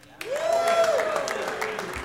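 A single person claps a handful of times at an uneven pace with sharp slaps, while a voice makes a drawn-out vocal sound over the top.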